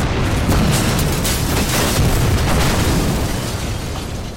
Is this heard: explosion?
yes